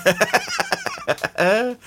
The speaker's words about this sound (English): I mean, you should have said something like, well, our rack of vainly struggling upside down chickens is inexorably trundling towards the guy